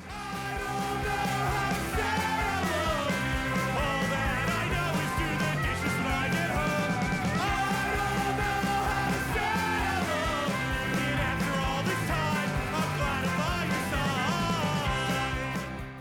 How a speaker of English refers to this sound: I like the harmonica in there.